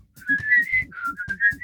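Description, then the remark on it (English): Someone whistles a short, bouncy tune, the clear pitched tone gliding between notes in a lilting rhythm, with soft thumping accompaniment underneath and no talking. “There's a great whistle part in this song.”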